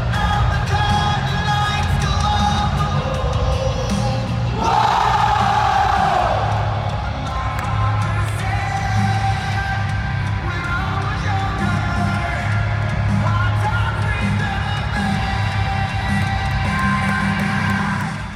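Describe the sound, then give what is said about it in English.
A huge arena crowd at a show roars continuously for Cody Rhodes, a dense wash of cheers, whoops and yells with no break, swelling briefly around five seconds as shouts rise above the steady din. “Hear the crowd on the toes, ready for me to start the show.”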